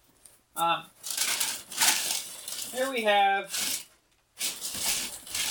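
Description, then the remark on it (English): Loud rustling and crunching of cardboard being pressed flat and ripped, in several rough bursts with short pauses, while a person briefly speaks over the noise. “One flattened thing of cardboard.”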